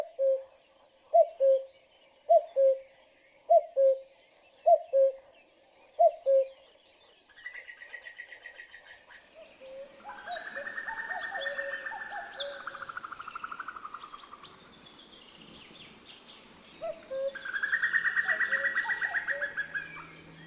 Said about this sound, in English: So there you heard the familiar two-note call of the male cuckoo, cuckoo, and then that extraordinary bubbling sound. It's very haunting. It almost sends shivers down my spine. And that's the less often heard call of a female cuckoo.